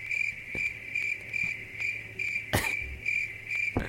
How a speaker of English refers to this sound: I don't know why the crickets keep going. I can't stop the crickets for some reason.